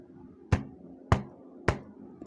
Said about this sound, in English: Sammy knocked on Sophie's door.